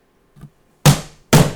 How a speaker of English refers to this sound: She pounds on the door.